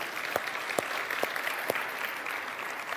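An audience claps together in a steady, fairly loud round of applause, dense crackling claps with a few sharper hand claps standing out at a regular pace.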